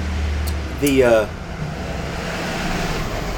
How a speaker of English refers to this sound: We don't often get UPS trucks, but occasionally we do. Not at 8:30 in the evening. That's unusual.